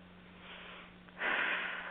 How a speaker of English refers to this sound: Breathing in. Breathing out.